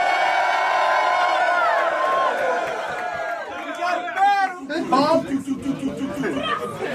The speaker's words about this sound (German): Hammer erste Runde, macht mal Lärm für beide MCs bisher.